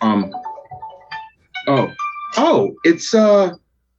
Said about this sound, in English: My phone is ringing here. Hang on a second.